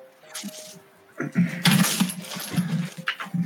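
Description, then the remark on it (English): A small die clatters and tumbles across a hard tabletop in a quick burst of rattling knocks, with faint background murmur and a brief tone early on. “Rolling a die. I got a 1.”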